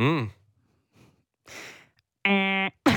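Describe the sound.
A voice imitates a game-show buzzer: one flat, steady, loud nasal drone lasting about half a second. Before it come a short vocal sound and a couple of breathy exhales.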